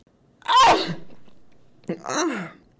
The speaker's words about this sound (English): What did I do? I sneezed!